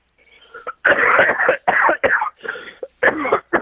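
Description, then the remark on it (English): A loud laugh-cough: a run of rough, breathy bursts in quick, uneven succession, lasting a few seconds with no talking around it. “That was a laugh cough.”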